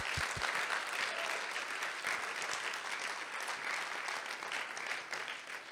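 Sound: audience clapping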